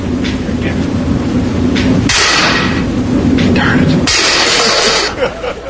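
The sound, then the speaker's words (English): Two hard hammer blows on a very tough plastic object, struck to try to break it, land about two seconds apart, each a sharp, bright crack with a harsh ringing tail, while people murmur and talk steadily in the background. “Somebody got a bigger hammer?”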